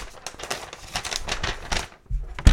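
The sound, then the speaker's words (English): A printer prints a page with a rapid run of rhythmic, rattling mechanical clicks, steady and fairly loud, ending in a brief low motor hum as it stops. “Fresh off the printer.”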